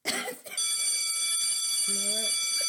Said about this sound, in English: You hear the school bells. You hear them ringing. So you know what time it is.